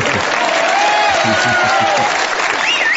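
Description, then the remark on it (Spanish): Loud audience applause, a dense, continuous crackle of many hands clapping that holds steady for the full three seconds, with a faint voice briefly audible beneath it; the applause is for Edward G. Robinson. “Los aplausos vienen porque me está saltando el señor Edward G. Robinson.”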